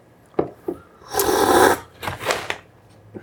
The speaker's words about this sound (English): Now you get to listen to us slurping our Tim Wendelbo.